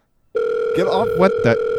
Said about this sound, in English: Who's on the phone in the crowd?